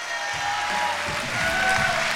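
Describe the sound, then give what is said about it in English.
A church audience in South Austin claps their hands in a steady, dense wash of applause, loud and continuous for the whole stretch, with a low murmur of voices underneath. “Clap your hands and receive it now.”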